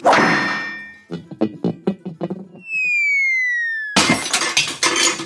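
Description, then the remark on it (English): A hammer smashes a lamp: a loud smash of breaking glass and metal, followed by a rattle of clattering debris, a long descending whistle-like tone, and then another heavy crash, with no talking. “Now don't be alarmed by this hammer in my hand.”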